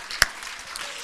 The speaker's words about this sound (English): Why don't we give him a hand clap of praise in the sanctuary?